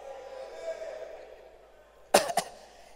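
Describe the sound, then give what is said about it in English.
A low, steady hum fills the first two seconds, then a sudden double cough breaks in: two sharp, loud bursts in quick succession. “How many of you will be happy one day as you're saying chan, then you hear a cough in the room?”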